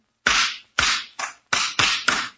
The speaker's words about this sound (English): Is that the way you pound nails?